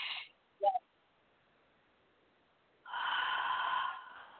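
A short sharp inhale, then a pause, followed by a long, heavy exhale that swells and slowly fades, with no talking. A person doing deep breathing to relax and release.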